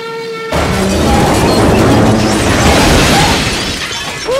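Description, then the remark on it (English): An early airplane flown by Wilbur crashing after lifting too steeply off the end of a 60-foot track: after a brief faint hum, a sudden loud burst of splintering, shattering debris that rumbles and clatters for about four seconds before easing off slightly. “I never seen a crash like that.”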